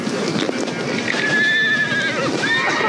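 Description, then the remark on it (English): A horse neighs loudly, a long wavering whinny followed by a shorter rising call, over a busy background that sounds like hoofbeats clattering on the ground. “The horses here are faster or stronger and a great deal wilder than we are used to.”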